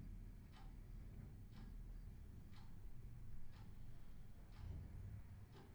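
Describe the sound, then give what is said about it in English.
A clock ticks steadily, about once per second, its faint, crisp clicks sitting over a low hum of quiet background noise. No one speaks. “So conveniently in here, there's the ticking of the clock.”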